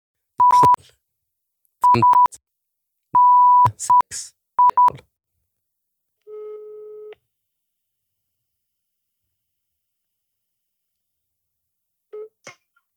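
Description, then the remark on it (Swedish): A string of short, loud touch-tone beeps as a phone number is keyed in to call about a Blocket ad, in quick bursts, followed by a lower steady ringback tone and then a brief click as the line picks up. “jag ringer på Blocket-annonsen”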